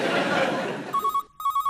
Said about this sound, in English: I'll get that, Steve. It could be important and you're new. Hello? Sally's phone.